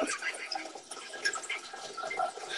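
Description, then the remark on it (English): Water is poured into a glass, splashing and trickling steadily, a continuous bright pouring sound lasting a couple of seconds without pause. “I'm pouring myself some water.”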